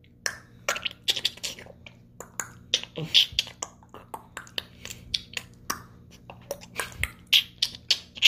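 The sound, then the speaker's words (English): A voice makes a rapid series of sharp mouth clicks and pops, irregular but rhythmic, fairly loud, imitating percussive tribal music with no words spoken. “So give me an example of tribal want clicking me to do noises.”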